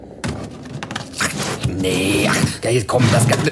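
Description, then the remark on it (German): A heavy metal safe door grinds and scrapes open with mechanical clanks and a sliding rasp, fairly loud, followed by a brief thunk as it settles. “Die Zeitmaschine ist nicht im Safe. Da ist doch nur der Schlüssel drin, der uns die riesige Lagerhalle öffnet, in der die ganze Technik untergebracht ist, oder?”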